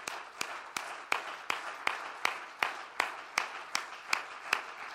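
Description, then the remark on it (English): A seated audience claps hands in a steady, even rhythm, sharp regular claps rising over a dense wash of many hands clapping together, with no voices. “Why don't we just clap our hands as we're seated?”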